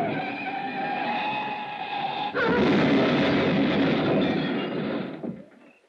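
A car rounding a curve near the Pacific Coast Highway skids and crashes into granite cliffs: a sustained, shrill tire screech for a couple of seconds gives way abruptly to a loud, rumbling crash of grinding and tearing metal that carries on for several seconds before fading out.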